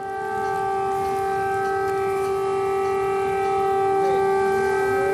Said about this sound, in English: Air raid sirens rang out across Kiev as Russian President Vladimir Putin began what he described as a special military operation in Ukraine.